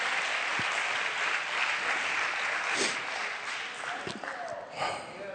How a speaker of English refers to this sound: Come on, somebody. Just say, just clap your hands to the Lord right now. That's the Spirit of the Lord that's in this house.